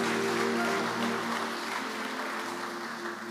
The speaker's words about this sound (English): Give the Lord a clap offering, somebody.